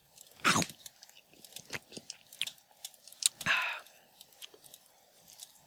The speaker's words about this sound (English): I kind of just chewed it a couple times, swallowed it, drank a little bit of soda afterwards.